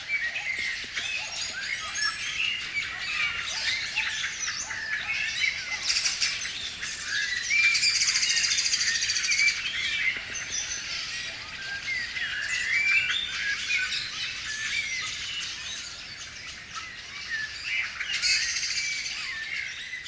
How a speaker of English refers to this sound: So what you're hearing is a chorus of mainly blackbirds. This area is also close to some towns, so you're listening to some dogs as well. But the complexity of blackbirds in this case, it's quite astonishing.